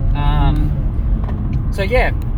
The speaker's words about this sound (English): Excuse the kind of ruffling. As I said, I'm in the car, and there was a car on the side of the road that was broken down, so I had to kind of safely navigate my way around while keeping both hands on the wheel.